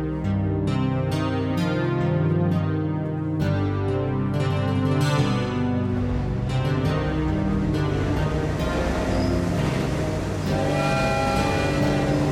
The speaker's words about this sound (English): Stop, Bellevue Station. Bellevue Station next. I get off the train at Bellevue Station and stand there a moment, waiting.